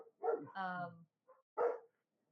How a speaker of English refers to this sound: All right, doggy, fuck off.